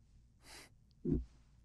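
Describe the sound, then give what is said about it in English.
A breathy exhale is followed by a short, wet-sounding snort through a stuffy nose, fairly quiet, with no talking. “I feel like there's a booger breathing up and down in my nose.”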